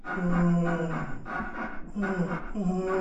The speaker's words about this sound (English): And there's this weird creaking sound.